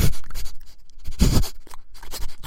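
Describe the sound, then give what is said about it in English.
A person imitates a curious pug dog with a rapid string of wet snorts and snuffling breaths, loud, raspy bursts in an irregular rhythm with no barking and no words. “I can do my dog impression that you didn't want me to do.”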